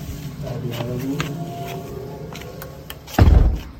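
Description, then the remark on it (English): A door creaks open over a low ambient hum as someone goes through it, then slams shut with a single heavy thud near the end. “Okay, I went through the door.”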